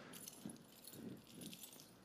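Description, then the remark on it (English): Keys on a keychain jangle and clink together in a short, busy flurry as someone with eyes closed blindly grabs one, meant to open a locked box; a metallic rattle with bright jingling bursts and no talking. “So close your eyes, don't cheat. Grab one of these keys.”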